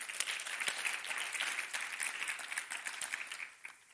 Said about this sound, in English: Come on, give the Lord a good clap offering. Amen.